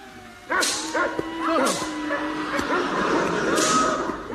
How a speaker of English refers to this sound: Mush. Must keep the dogs at a gallop.